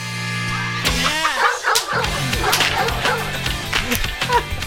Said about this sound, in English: It has to be literally because there are dogs barking and that sounds aggressive.